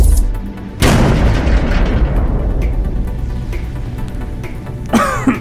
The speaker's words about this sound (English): Firing cannons.